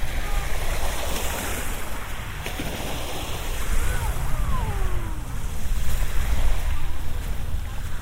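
Sea waves wash steadily at the beach in a continuous roar on a flat sea in bright sunshine, swelling slightly at moments, with low wind rumble buffeting the microphone throughout and no voices.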